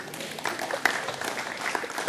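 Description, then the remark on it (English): An audience applauds a guest invited up to share, a dense, steady wash of many hands clapping at once with no individual claps standing out, holding a fairly even level for about two seconds. “And give her a round of applause.”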